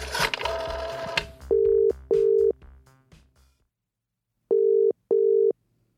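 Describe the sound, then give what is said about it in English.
A telephone tone sounds while a call is placed to a journalist at The Telegraph: two pairs of steady, clear beeps with a gap between, following a brief burst of clattering handling noise. No voices. “Oh, mate, we really need to get a new phone.”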